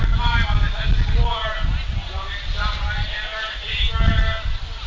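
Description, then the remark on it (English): Steady low rumbling buffets of wind hit an outdoor microphone throughout, loud, with people talking over the gusty roar. “A little windy up here.”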